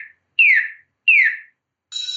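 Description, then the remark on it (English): A GPS-based driving app's traffic light alert, given while on a voice call: two quick, fairly loud electronic chirps that each slide downward in pitch, then a brighter, steady buzzy tone, with no one talking. “So it gives you those alerts when you're on a voice call.”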